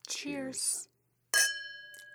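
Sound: drinks clinking together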